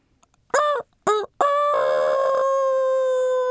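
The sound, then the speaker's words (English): A rooster crows loudly: two short clipped notes followed by a long, sustained, drawn-out final call, with no other sounds around it. “Rooster crowed a second time.”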